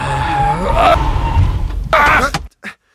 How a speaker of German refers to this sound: Das ist die Bremse. Entschuldigung.